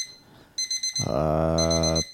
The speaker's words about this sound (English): What is the meaning of this? It's a Sunday, don't have work, something in the oven? No, oven's been broken for going on 2 months now. Don't know why I set this alarm.